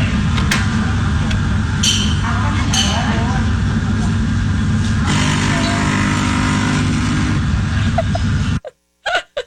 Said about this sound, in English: Can we listen to the actual coffee machine first? Now, I want you to listen again.